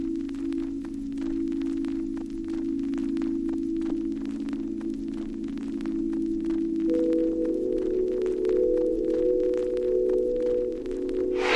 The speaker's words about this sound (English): Sounds of her drawing echoing around the corridors. The other artists are all really aware of it.